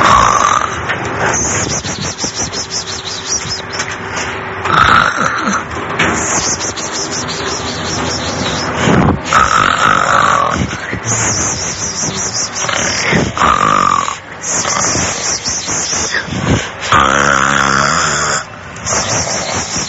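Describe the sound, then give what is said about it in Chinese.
A young woman snores loudly and steadily in a bedroom, each rasping, throaty breath repeating every few seconds, sometimes with a deeper, harsher snort mixed in. “就係咩睡房 睡 就係一个怨妇女怨妇我哋听下女怨妇嘅鼻寒究竟系点啦？”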